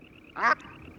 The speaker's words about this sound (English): It's another one of those species that we can introduce people to that they may not have encountered to this point. So in that regard, one of the things that I want to do is play the call of the Brant.